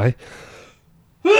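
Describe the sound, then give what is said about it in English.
A single sneeze: a sharp catch of breath, then a breathy, hissing burst that trails off. A short silence follows before a voice begins speaking. “Excuse me. Bless you.”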